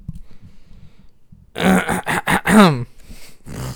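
After a second and a half of low, quiet rumble, someone clears their throat in a quick series of loud, rasping, gravelly bursts, then gives one more short rough hack.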